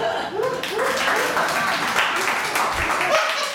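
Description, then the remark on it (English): An audience claps in a steady, dense wash of applause for the speakers' accomplishments, with some voices calling out and murmuring over the clapping for a few seconds. “Yes, it's okay to clap.”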